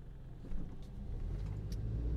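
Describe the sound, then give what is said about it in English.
A car engine hums with a steady low rumble as it drives along in traffic, rising slightly in level after a moment, with no voices. “Sorry, I just had to pay attention to traffic there for a minute.”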